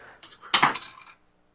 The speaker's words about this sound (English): That pencil has gone flying across the room.